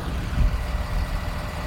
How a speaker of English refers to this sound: And they're getting on the bus.